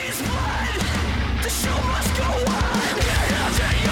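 Harsh screamed vocals ride over loud, dense heavy music with thick low-end bass and crashing cymbals, playing continuously at full volume throughout.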